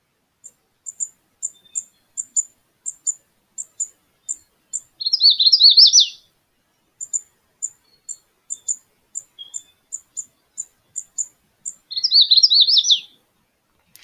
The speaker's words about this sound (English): And that was my lifer for the day, and it was a magnolia warbler. Very, very pretty little bird. Really, really nice song.